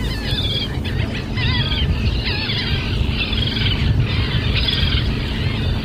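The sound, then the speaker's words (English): A dense chorus of seabirds calling at once at Eastern Egg Rock, the Project Puffin site off the coast of Maine, with loud, nasal laughing gull cries rising and falling over sharp, high-pitched common tern calls, all above a constant low rumble of wind or surf. “What you're hearing in the background are the loudest ones are the laughing gulls and then the common terns.”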